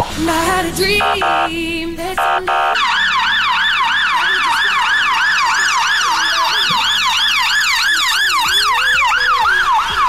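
A police car siren wails loudly, its rapid rising-and-falling tone repeating steadily over a low rumble, after a brief burst of choppy yelps at the start.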